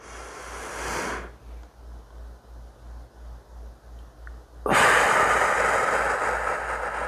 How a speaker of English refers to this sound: All right, here we go. 4, 7, 8 breaths.